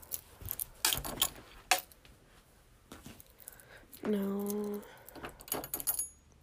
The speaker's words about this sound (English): A whole bunch of keys. Found something? Yeah. What are they? Which one? There's like 4 keys on here. You wanna try them? Yeah.